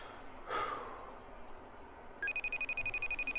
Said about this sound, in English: Phone's ringing.